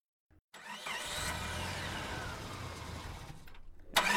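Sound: car engine starting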